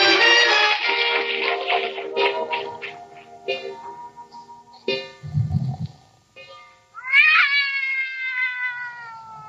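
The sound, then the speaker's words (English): Loud, drawn-out cat yowling at night, several long wavering wails with brief pauses, rising and falling in pitch, ending in a sharp rising howl. No talking. “Did you wake me up so I could listen to that cat concert?”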